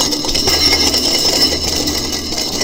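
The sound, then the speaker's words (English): A loud, sustained metallic wash like a cymbal being clanged, with bright, harsh shimmer across the highs and a steady roar that continues without pause for a couple of seconds. “If I was to speak in the tongues of men, if I was to use all the gifts but do not have love, I'm like this clanging cymbal.”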